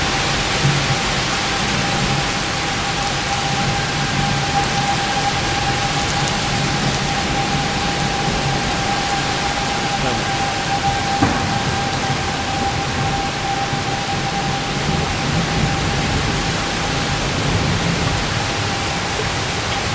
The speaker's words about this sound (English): Now, hear that? That's the rain hitting outside.